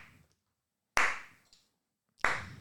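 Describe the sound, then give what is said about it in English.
A slow clap: two sharp, loud claps spaced over a second apart, each ringing out briefly, with a fading tail from an earlier clap at the start and silence between. “Why are we getting a slow clap?”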